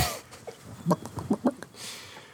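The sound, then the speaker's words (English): A chicken clucks in a quick series of short, choppy calls, moderately loud, with no talking over it. “I thought I heard a chicken.”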